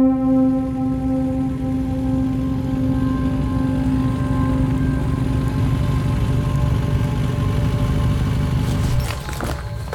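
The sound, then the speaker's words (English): A motorbike engine runs loud with a steady, droning hum that holds for several seconds, then shifts abruptly near the end with some brief clattering. “Yeah, we can still catch him. Get on the bike.”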